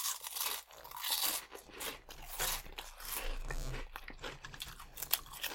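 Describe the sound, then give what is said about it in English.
Crisp crunching and chewing on hot fries snacks, a steady run of brittle, crackly bites repeating for several seconds at a fairly soft level, with no talking. “Let's start with the fries. Let's do fries first.”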